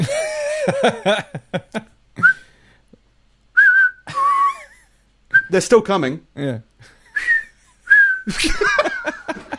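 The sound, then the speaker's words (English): Several short, shrill whistles from people ring out one after another to scare off locusts, mixed with bursts of talking and a bit of laughter, loud. “Others are whistling.”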